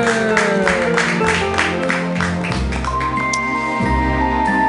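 Audience applause at a stand-up comedy show for a comedian rises as a burst of clapping, blended with loud, steady walk-on music that carries sustained tones throughout; the clapping is densest in the first couple of seconds.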